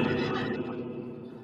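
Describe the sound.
A person imitates a horse whinny with a strained, wavering vocal cry, loud, sustained for about a second and a half before trailing off.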